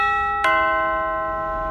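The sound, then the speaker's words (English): A doorbell chimes two clear, bright notes in quick succession, the second struck just under half a second after the first, then rings on and slowly fades. No one speaks. “Pressing the doorbell now.”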